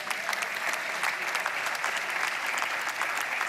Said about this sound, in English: Why are we applauding? We're applauding because we know it's beautiful, right?